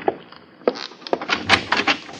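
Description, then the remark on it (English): A closet door is pulled open with a few sharp knocks followed by a scraping, rattling slide, fairly loud, with no voices. “Not even in the closet.”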